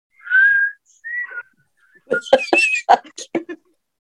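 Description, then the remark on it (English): Someone tries to whistle: a thin, wavering tone followed by a shorter one, then a run of breathy, sputtering puffs of air where the whistle fails to sound cleanly. “Hey, I'm trying to whistle. See? And it won't come out.”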